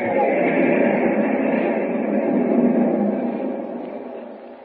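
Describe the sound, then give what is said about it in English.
Steady rumbling roar of a moving passenger train, ten minutes from its next stop at Carson City. A continuous dense clatter holds fairly loud throughout and eases off slightly toward the end, with no voices. “Will Superman arrive before Lois is taken off the train at Carson City?”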